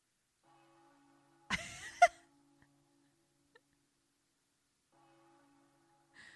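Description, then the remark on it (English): Faint church bells ring with a low, humming resonance, briefly interrupted by a sharp, noisy burst, then fading and returning softly near the end. “Church bells.”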